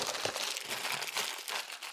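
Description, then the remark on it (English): Gift wrapping paper on a birthday gift crinkles and crackles continuously for about two seconds as the gift is opened and crinkled into a microphone, a bright, dense rustle with irregular snaps and no voices over it. “Crinkle that into the microphone for good measure.”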